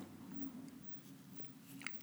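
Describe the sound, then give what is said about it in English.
40 grams of coffee beans being ground to a medium grind, a steady low crunching grind with small gritty cracks scattered through it, fairly quiet and continuous with no voices. “Grind 40 grams of coffee. Medium grind, depending on coffee density.”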